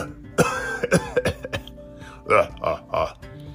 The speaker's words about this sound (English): Oh, the volcano smoke is making me cough a lot. This is terrible.